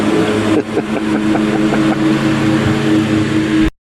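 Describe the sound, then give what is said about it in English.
A lawn mower mowing the yards right next to a window drones loudly and steadily, a rough buzzing hum with a constant pitch, running without pause until it cuts off abruptly near the end. “So I hear that's them gonna, mowing the yards right next to your window. It's going to get pretty loud.”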